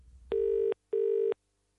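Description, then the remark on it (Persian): Two bursts of a telephone ringback tone on a call to a cinema's phone line, a steady buzzy double ring with a brief gap between, heard clearly and alone over a quiet line with no voices, before a recorded message. “خب، حالا به پیام ضبط شده یه تلفن یک سینما گوش میدیم.”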